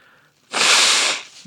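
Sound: nose blowing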